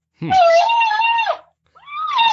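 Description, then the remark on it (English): Two elk calls blown on an elk flute designed by Wilbur Primos: a low grunt that jumps into a long, loud, high whistling bugle with a raspy edge, then a second call starting after a short pause. “I mean, Wilbur Primos designed the world's best elk flute, requires no practice. All you got to do is put your lips on it and blow.”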